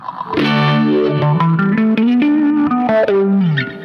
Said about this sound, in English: So does it distort? What does the blues driver do? It just distorts your high end. Okay, gotcha. So it's like a distortion pedal, but like the light version, so it doesn't like blow your ears out.